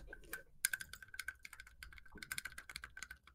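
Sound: mechanical keyboard keys clicking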